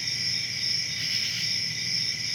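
A steady, unbroken chirring of cicadas, a high shrill drone holding at an even loudness throughout, with a faint low rumble underneath and no voices.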